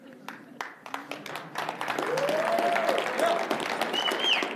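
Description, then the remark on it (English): An audience breaks into applause, starting as scattered claps and swelling into steady, loud clapping that holds for several seconds, with a few brief whoops rising above it. “Don't give me a pity clap.”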